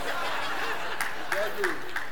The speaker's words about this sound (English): Oh, the Dodger fans clap.